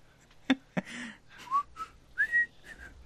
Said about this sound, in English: I can't whistle.